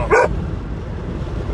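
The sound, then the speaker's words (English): A single short, sharp dog bark rings out near the start, followed by a low, steady background rumble with no further barking. “Shut up, dog.”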